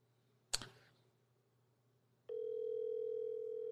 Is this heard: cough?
no